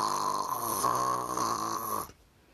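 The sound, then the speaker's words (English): A single long, loud snore from the character Jeff rattles steadily for about two seconds with a buzzing, nasal drone, then cuts off abruptly into near silence. “Captain Man looked at him, and Kid Danger looked at him, and did what Jeff is snoring.”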